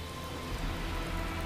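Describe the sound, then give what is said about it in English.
Steady rain pours down at night outside a building, a dense, continuous hiss of drops striking a hard surface, with a low rumbling undertone and no voices. “With that, you make your way as fast as you can down the side of the building into the rain as you see them beginning to drag Aura into a dark cellar, the cellar that you saw before with the two open doors.”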